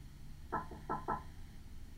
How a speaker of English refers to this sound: Was that a knock?